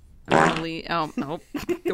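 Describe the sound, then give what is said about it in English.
A voice imitates a fart: one long, buzzy, wavering blat followed by a few shorter sputtering bursts, loud and alone with no words. “Do one quick fart.”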